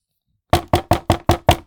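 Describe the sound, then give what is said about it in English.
A rapid series of six firm knocks on a door, evenly spaced and loud, starting after a brief silence with no voices. “Another barrage of knocks came from the door.”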